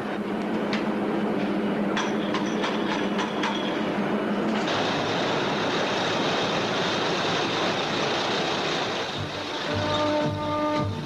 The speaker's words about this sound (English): In 3 months, 500,000 freight cars rolled into Kursk.